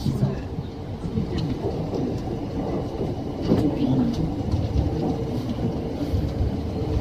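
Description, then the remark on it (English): A subway train rumbles steadily along between stations, a loud, continuous low roar with faint rattling and clatter over the top, swelling slightly midway through. “Please change here for the Oedo subway line.”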